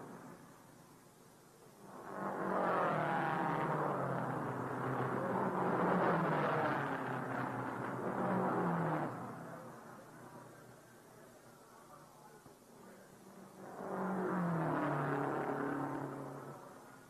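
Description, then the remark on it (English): A race car engine revs hard in two long, roaring bursts during a pit stop, as Lou Moore changes the tires and driver Holland stays in his seat, settling to a lower idling rumble in between before climbing again. “Only four crew members, including the driver, are allowed to work on the car.”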